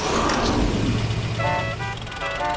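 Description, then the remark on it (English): Busy road noise from a massive traffic jam of cars outside a mall on a sales day, with a steady low engine rumble from idling cars and short tonal horn-like honks sounding several times near the end, fairly loud. “Everyone wanted to come to the mall for the sales day, and this is causing a massive traffic jam outside the mall.”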